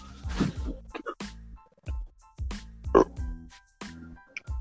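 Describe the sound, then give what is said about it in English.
A drawn-out series of loud, low, croaky burps, gurgling in several uneven bursts with brief pauses between them, and no talking. “I'm sorry for burping, but yeah, that sounds weird.”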